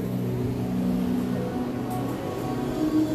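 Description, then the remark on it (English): Theme park queue line ambience for a spinning car ride: a steady, fairly loud low mechanical drone and rumble with a faint hiss above it, continuous throughout with no one talking. “Some of the sounds for you for the queue line for Cobra's Curse.”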